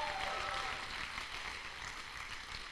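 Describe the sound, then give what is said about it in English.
A crowd claps steadily throughout, a dense, bright patter of many hands with no clear individual beats, holding an even loudness for the few seconds without any talking. “some of you don't know what a clap.”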